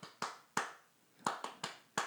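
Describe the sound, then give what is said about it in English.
Sharp hand claps from people clapping a double clap in sync ring out alone, about seven in two seconds, falling loosely into quick pairs with short pauses between, each clap crisp and bright with a brief decay. “They're clapping. The clap. The double clap, right?”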